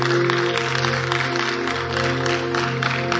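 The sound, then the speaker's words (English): An audience claps continuously, a dense, steady patter of many hands with no pauses, while sustained low tones hum underneath throughout. “Oh, you are clapping as though your hands are not yours.”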